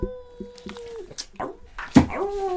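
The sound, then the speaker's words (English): A dog whimpers with sustained high-pitched whines, broken by a few short sharp yips and a louder yelp near the end, with no talking. “Hey, I almost got frenched by a dog.”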